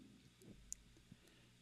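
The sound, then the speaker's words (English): A single crisp computer mouse click stands out against a quiet, faint hum, followed by a softer, duller tap a moment later, as someone clicks to find a vehicle on the Fluid Truck site. No one speaks. “I'm clicking to find a vehicle.”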